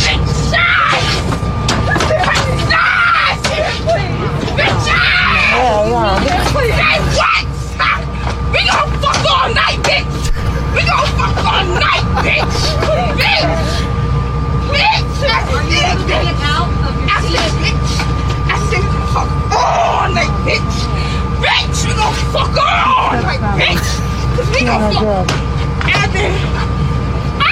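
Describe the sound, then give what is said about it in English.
A woman bangs repeatedly on airplane overhead compartments, loud irregular bangs over a constant cabin rumble, with people shouting and talking throughout. “She's like banging on the overhead compartments.”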